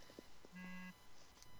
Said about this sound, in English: I don't know whose phone that was. That was me.